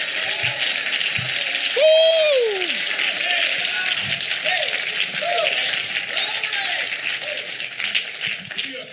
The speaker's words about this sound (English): Somebody clap your hands and give him high praise in this house.